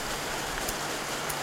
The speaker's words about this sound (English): The lovely rain is in the background. We're going to vibe with that.